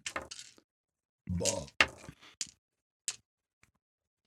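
A handful of many dice is rolled onto a tabletop for attack damage in a tabletop game: a dense burst of hard plastic clicks, then a few scattered taps as they settle. No one speaks.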